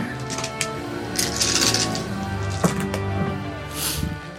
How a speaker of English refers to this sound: I'm going to throw those sneak attack dice on there.